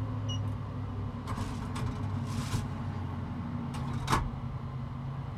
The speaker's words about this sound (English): So the door to the incineration chamber is closed again, and the process continues. Takes about 40 minutes to complete, but like I said, anybody can go during it and it'll just pause and continue after you're done.